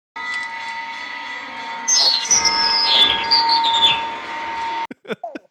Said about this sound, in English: Trigger warning. If you don't like the sound of screeching noises, just skip ahead 15 seconds.